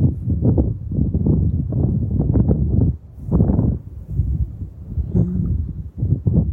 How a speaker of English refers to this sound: The wind's playing with us this morning. If I was a bird, oh, what fun I'd have. Still to be caressed by the wind is a lovely gift. And the susurrance of the sound in the dried grasses. The waves lapping.